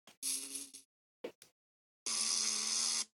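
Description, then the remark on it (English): Buzzy electronic video game bee sound effects: a short harmonic drone, two quick clipped blips, then a longer loud, bright buzz that cuts off abruptly. Harsh, steady tones with strong overtones, no voices. “I'm gonna play some of the sound effects they have.”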